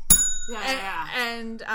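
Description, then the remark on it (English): A single bright bell ding rings out sharply at the start, its shimmering tone lingering briefly as a voice begins talking over it. “No, the bells are all staying in.”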